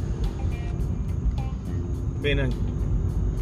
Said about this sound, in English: Trying to listen to my car while I'm driving.